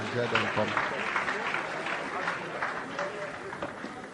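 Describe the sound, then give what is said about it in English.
A crowd applauds steadily and fairly loudly, a dense, even patter of many hands clapping at once, with faint voices mixed in near the start. “Clap for me now.”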